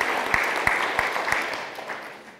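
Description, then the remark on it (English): A crowd applauds with a steady wash of clapping after hearing that the staff budget is ahead in March. A few sharper claps land in an even rhythm before the applause thins and fades out. “Now, yeah, we can clap.”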